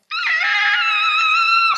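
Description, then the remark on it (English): A loud, blood-curdling scream in a long, dark hallway of an old house holds a high, piercing pitch for nearly two seconds, harsh and sustained without a break, then cuts off abruptly. No talking accompanies it. “Along the long, dark hallway, they were about to step on a crack where they heard a blood-curdling scream.”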